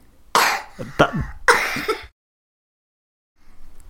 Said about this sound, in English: Yeah, now stop making yourself cough, because that's going to make yourself cough even more.